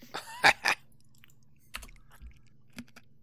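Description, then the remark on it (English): Someone chews ice: a few loud, sharp crunches at the start, then quieter scattered crunching with pauses between bites. No one speaks. “You having fun eating your fucking ice over there?”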